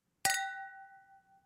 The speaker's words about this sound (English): There's my sound effect. Yeah. Clink, clink. This is actually a plastic glass.